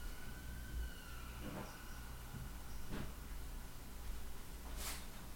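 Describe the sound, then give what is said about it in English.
A faint siren wails as a thin, slowly shifting tone over a low background rumble, with a few brief noisy bursts cutting through. “A siren.”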